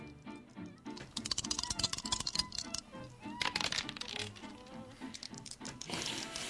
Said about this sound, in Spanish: Así que vamos a tirar dos dados. ¿Quién quiere arrancar? Yo empiezo. ¿Tiro el dado? Ahí está.